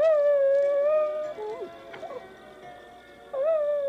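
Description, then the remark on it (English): A dog lets out a long, wavering high howl that dips into odd warbling yelps in the middle, then swells back into a sustained howl at the end. No one speaks. “Because it is the weirdest sound that he makes. Yeah, we'll put a little clip in for sure.”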